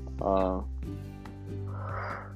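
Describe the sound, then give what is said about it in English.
A yawn at 1 a.m.: a short voiced, groaning stretch followed by a softer, breathy exhale, fairly loud against a low steady hum with no words spoken. “If we excuse me yawning, it's like it's exactly 1 o'clock a.m.”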